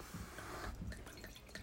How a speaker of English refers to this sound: I'm only pouring myself a glass because... I already started.